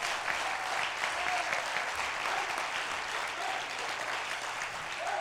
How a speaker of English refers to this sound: Oh, come on, clap your hands and praise God.